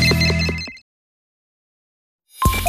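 A loud electronic phone ringtone melody plays briefly and cuts off abruptly, followed by nearly two seconds of silence before another burst of tones begins at the end.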